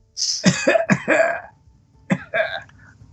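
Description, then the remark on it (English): A voice fakes a cough: an exaggerated cluster of throaty bursts, a short pause, then one more rough, theatrical cough. “Cough, …, cough.”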